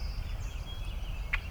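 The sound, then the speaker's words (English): A red-winged blackbird at the margin of a pond gives a brief, bright call near the end, with thin high whistles before it, all over the steady low rumble of the distant ocean. “And the red-winged blackbird at the margin of a pond.”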